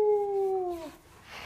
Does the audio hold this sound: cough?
no